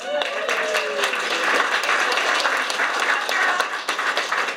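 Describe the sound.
A crowd applauds steadily, a dense patter of many hands clapping at an even loudness throughout, with a brief voice or cheer audible near the start.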